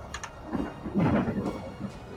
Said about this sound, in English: I like how there was a thunder, Greg, after you said that, too.